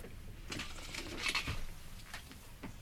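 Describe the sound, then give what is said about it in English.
A squeaky shoe squeaks with each step, making four short, high chirping squeaks at a steady walking pace over a low background hiss, with no one talking. “But I am cursed this morn with a squeaky shoe.”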